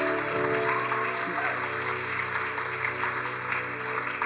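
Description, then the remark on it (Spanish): An audience gives God a round of applause after a prayer, bursting into loud, sustained applause, a dense wash of clapping that holds steady throughout, with a low musical hum and faint voices mixed underneath. “Dale a Dios un fuerte aplauso.”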